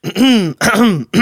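Three quick, loud coughs, each a voiced, throaty burst, coming in a rough rhythm with short gaps between them and no talking.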